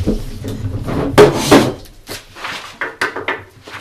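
Knocking on wood, close by: two loud hard raps followed by several lighter, irregular knocks, with some scraping and handling noise between them and no one talking.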